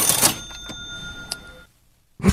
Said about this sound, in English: Cash register, which you got to be at least 40 to have ever heard one, probably. Although I think the whole cha-ching sound effect is universally known. Maybe.